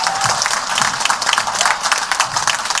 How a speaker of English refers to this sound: Hey y'all, clap your hands one more time